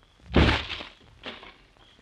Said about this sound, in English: Step back, will you? Let me kick open the door.